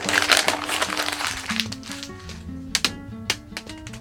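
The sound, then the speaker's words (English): Dry, crackly rustling of paper being crumpled up and thrown away, loudest in the first second and a half, followed by a few sharp crinkles, with a tinkling melody playing underneath. “I was just throwing away that paper.”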